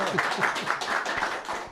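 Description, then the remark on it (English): A crowd applauds steadily, with many hands clapping in a dense, continuous patter that stays fairly even in loudness throughout. No one speaks. “That is a nice round of applause.”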